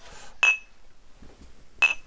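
glasses clinking

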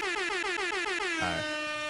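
air horn sound effect

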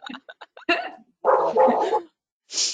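dogs barking

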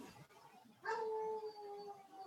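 dog howling and barking

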